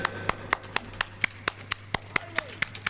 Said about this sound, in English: Okay, come up to the stage. Give a lady a round of applause.